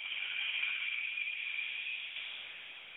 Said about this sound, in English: Inhale through your nose, deep breath. And exhale through your nose.